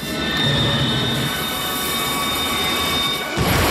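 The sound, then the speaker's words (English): The runaway train that Harrison Ford barely dodged in the film The Fugitive thunders by loud, a steady roar of rolling wheels laced with high metallic screeching that holds throughout, then shifts abruptly near the end. No one speaks. “Stopping a leak is much easier than stopping the runaway train that Harrison Ford barely dodged in The Fugitive.”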